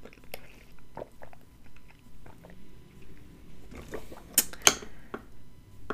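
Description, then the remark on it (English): A plastic water bottle is handled with scattered soft clicks and crinkles, then a short burst of sharper, louder crackling pops near the end. No one speaks. “That was my water bottle, everyone.”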